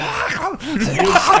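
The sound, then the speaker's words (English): A man hawks and clears his throat in a few rough, gravelly bursts, with voiced grunts rising and falling in pitch, moderately loud over a steady background hum. “Yeah, like, the guy's like clearing his throat down there.”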